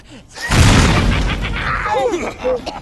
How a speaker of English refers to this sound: Wow, that was an expensive-looking explosion. I can't believe we had that in the budget.